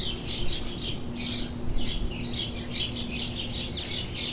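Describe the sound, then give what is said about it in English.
A northern cardinal sings a steady run of bright, repeated whistled phrases, clear over a faint low background hum with no voices. “The northern cardinal, for example, has expanded its range northward over time and has now been consistently present in the southern parts of Canada for about 100 years.”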